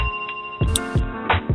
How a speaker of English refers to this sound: I'm going to ring the bell for that.